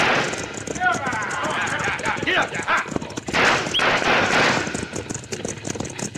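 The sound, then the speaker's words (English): Rapid bursts of gunfire crack through a busy, noisy scene as shots are fired at a stagecoach driver, with hoofbeats and shouting voices mixed underneath, loud throughout. “Open up on that driver. That'll stop him.”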